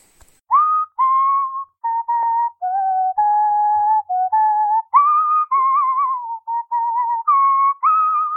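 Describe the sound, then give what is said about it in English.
A whistled tune with a smooth, wavering, theremin-like tone, sustained notes sliding between pitches in a steady melodic line, with brief breaths between phrases and no talking. “Yeah, that sounded like a theremin, though, actually.”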